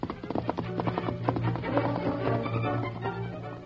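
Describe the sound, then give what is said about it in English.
Hoofbeats of an approaching horse ridden by Barnaby Leach: a steady, quick clip-clop of hooves on hard ground, growing a little fuller over a faint low hum, with no one speaking. “Sam heard the hoofbeats of an approaching horse and thought it might be the Lone Ranger returning from town.”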